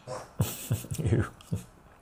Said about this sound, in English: Someone's trying to cough up a hairball.